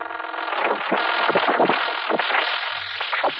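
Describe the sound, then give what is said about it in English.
A sustained, roaring explosion in an observatory: a dense wall of crackling, rushing noise that stays loud for several seconds, surging and swelling unevenly with no voices present. “Steve crouched behind the cabinet, clutched his ears and closed his eyes tightly as the sound and the brightness that flooded the observatory reached its peak. After the explosion, the darkness descended again, and there was silence.”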